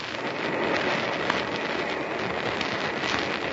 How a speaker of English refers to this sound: Now, I turn off the gas. And then I turn this nozzle, and a fine spray of water is shot into the cylinder, mixing with the gas.